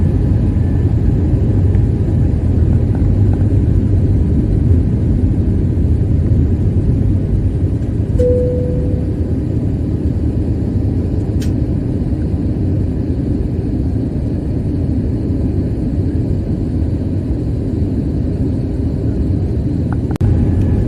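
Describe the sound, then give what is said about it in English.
A steady, loud low-frequency airplane engine rumble drones without pause, like the inside of an airplane cabin in flight, filmed from another plane, with a faint brief tone and a few tiny clicks over it. “I'm going to play this other video that I just recently saw, and it has to do with the same sort of like plane stuck in the air. And this is actually filmed from another plane.”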